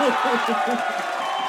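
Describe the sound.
An audience gives a round of applause: dense, steady clapping and crowd noise filling the brief moment, with voices cheering and talking mixed into the wash.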